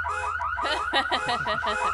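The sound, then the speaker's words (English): A loud electronic alarm cycles through rapid, repeating rising whoops and warbling tones, like a car alarm, sounding steadily for the whole stretch with no voices. “Attention. This is the My Wife alarm.”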